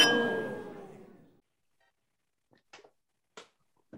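Glasses clink together once in a bright toast, the ring fading over about a second, followed by a few faint, short knocks in the quiet.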